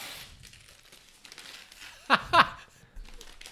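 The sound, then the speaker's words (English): Crisp rustling and crinkling of Christmas wrapping paper as a gift is unwrapped, with two sharper tearing rips near the end, then quieter shuffling continues. “Are people going to be able to hear the unwrapping? Probably. It is wrapped in Christmas wrapping paper because it's all I have.”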